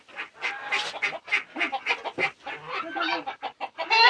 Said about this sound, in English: Hear how she quacks? It's a really clear quack, quack, quack.